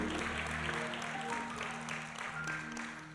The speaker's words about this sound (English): Clap your hands and give the Lord praise.